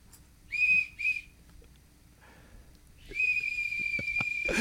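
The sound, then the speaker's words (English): A whistle is blown loudly: two short shrill toots, a brief pause, then one long steady blast held to the end, with no talking. “I told him before you got here, I'm going to give you this whistle.”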